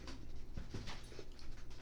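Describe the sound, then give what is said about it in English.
A dog sniffs and pants, with quick, breathy bursts of air and soft snuffling noises in a steady, restless rhythm, heard alone without speech. “I also have dogs, and his dog is smelling.”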